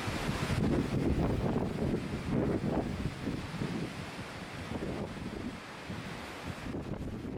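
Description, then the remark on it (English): Strong wind roars and buffets steadily during a windstorm on the Sea of Galilee, with gusty blasts battering the microphone and the rough churn of waves beneath, a loud, continuous storm with no voices. “Now, we have a short video clip here of what it looks like when there is a windstorm on the Sea of Galilee.”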